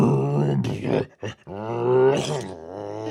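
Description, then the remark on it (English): A voice imitates the family's own tractor starting up after its dead battery is recharged: a low, rumbling, groaning drone with a brief sputtering break, then a rising, steadier roar that holds for a couple of seconds. “What's our tractor sound like when we start it up?”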